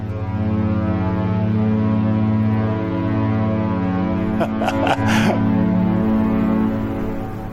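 A ship's foghorn sounds in fog near Cadiz in one long, steady, deep blast that fills the whole clip, loud, with a brief breathy human sound passing midway through.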